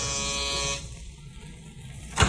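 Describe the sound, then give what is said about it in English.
The doorbell buzzer of a ground-floor apartment with an outside entrance, in a white stucco apartment house halfway up a hill on Melrose Avenue, east of Vermont, sounds once, a harsh, steady electric buzz lasting under a second, then stops, leaving quiet background noise until a short thump near the end. “They had a ground floor apartment with an outside entrance. Carol rang the bell.”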